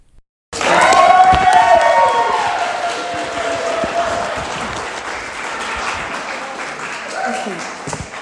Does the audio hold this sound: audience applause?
yes